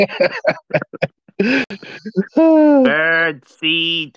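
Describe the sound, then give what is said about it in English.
A person's voice imitates an owl hoot, a few drawn-out, wavering hooting calls following a burst of quick, chattering vocal noises, loud and unaccompanied by other sounds. “Tweet woo. That's an owl”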